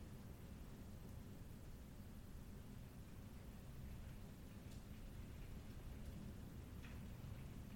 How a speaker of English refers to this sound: Now, if you indulge me and take in no speaking, no vocal from me for a moment, you might hear rain in the background.